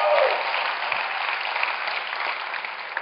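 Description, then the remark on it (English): An audience clapping steadily, a dense, sustained wash of applause that holds at an even level throughout, with a brief voice fragment right at the start. “Let's get a round of applause”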